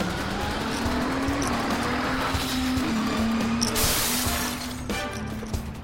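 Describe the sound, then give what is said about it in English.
The promotional car taken from the lobby by James Bond in Monte Carlo: its engine roars loudly and steadily, revving as it accelerates away, with a burst of screeching tires partway through before the noise begins to fade slightly. “I say, did James Bond just steal the promotional car from the lobby?”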